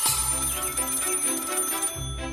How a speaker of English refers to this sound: Then the next morning, the phone rang.